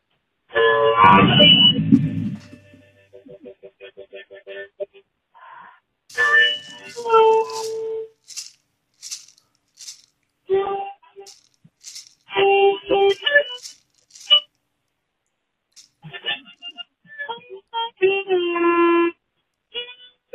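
A harmonica played faintly over a phone line, heard as thin, tinny bursts of reedy chords and single notes with short pauses between phrases.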